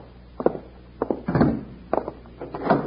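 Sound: door being locked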